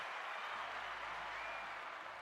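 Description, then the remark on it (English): A crowd applauding steadily, dense clapping spread evenly across the whole moment at a strong, constant level, with no voices standing out. “Clap it up.”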